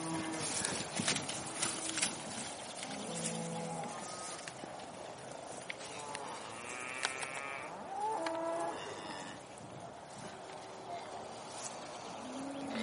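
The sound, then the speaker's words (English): Young cattle, penned up all winter, bustle out of their pen as they are let out a day early, hooves clattering busily on hard ground, with a few short bellowing calls rising over the lively scramble. “These little ones, we just let them out just now, a day early.”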